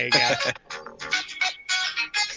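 A wrestling entrance theme, the theme song of wrestler Shane Scott, plays tinny and thin through a small phone speaker, loud and punchy with choppy bursts and short gaps, heard alone without talk over it.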